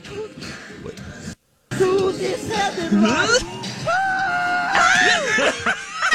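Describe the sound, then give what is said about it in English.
A man lets out a short, high, strained, loud scream amid excited vocal noises and laughter, just after a brief silent gap. “Oh, I think he just did a little scream.”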